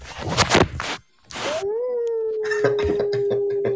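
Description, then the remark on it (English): A dog lets out a long, rising howl that holds a steady pitch for a couple of seconds, preceded by a few noisy bursts and a brief pause. “Shut that dog up.”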